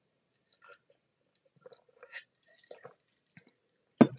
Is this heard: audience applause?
no